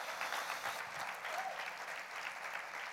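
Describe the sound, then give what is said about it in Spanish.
A crowd applauds for God, a steady three seconds of dense, even clapping by many hands at a consistent moderate level with no voices standing out. “Vamos, denle un aplauso a ese Dios, por favor.”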